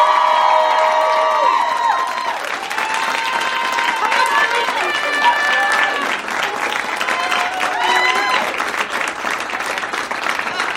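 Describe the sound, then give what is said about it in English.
Loud, sustained applause from a crowd at a comedy show, mixed with high-pitched cheers, whoops and shouts rising over the clapping throughout, with no break in the noise. “Let's have a round of applause for Janet.”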